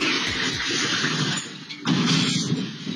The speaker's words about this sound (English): A man and woman in New Jersey were arrested after stealing a car, fleeing police, and then falling over 21 feet off an embankment and onto a house. Here's the car crash